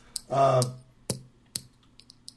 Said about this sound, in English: You hear that clicking? You got a little pen or something? I hear these little clicks and stuff.